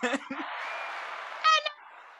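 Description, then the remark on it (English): A steady wash of applause fills about two seconds, with a voice briefly at the start and a short shout or cheer rising above the clapping midway through. “Applause.”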